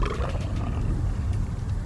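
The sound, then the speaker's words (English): A deep, loud Siberian tiger roar rumbles continuously for about two seconds, sustained, with heavy low growling throughout and no speech. “Black bears, polar bears, snow leopards, and the Siberian tiger.”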